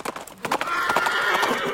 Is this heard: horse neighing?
yes